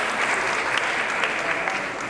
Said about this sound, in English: I'll ask you if you're a summer fellow, stand up so we can give you a round of applause.